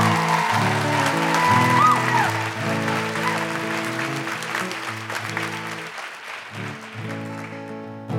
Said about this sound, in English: Another round of applause, I think, for these guys.